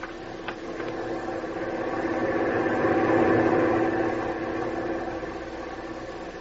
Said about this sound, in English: Truck is stopping in front of the boat.